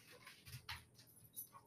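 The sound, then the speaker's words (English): A dog whimpers and lets out a few short, whiny yips in quick succession, fairly soft, with no one talking. “All right, I'm going to go walk this dog or something.”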